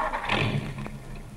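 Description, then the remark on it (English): A car engine, said to have a knock, is started up: it cranks and turns over, a low, steady rumble with a rough mechanical rattle and one brief sharp clunk partway through, with no voices. “I seem to have a knock in my engine. Let me hear it. Start her up.”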